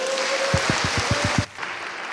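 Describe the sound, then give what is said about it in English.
An audience at a carol service applauds in a dense, steady wash of clapping, with a run of regular low thumps underneath, before it cuts off abruptly into quieter background noise. “So actually, I think we should just give them another massive round of applause now.”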